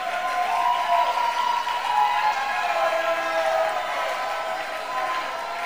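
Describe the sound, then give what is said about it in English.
An audience at a church service claps its hands in a steady, dense wash of applause that lasts several seconds, welcoming the pastor's wife to bring a greeting, mixed with faint voices and cheers underneath and holding a fairly even loudness throughout. “Clap your hands.”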